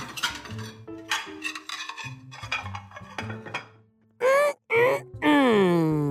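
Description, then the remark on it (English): Crunching and clinking of dirty dishes mixed with low, gravelly chewing grunts, then three loud, wavering goat-like bleats, apparently made by a human voice imitating a goat. “I have some dirty dishes in the sink just waiting for me to eat them.”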